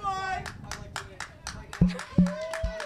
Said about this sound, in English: Applause, yes.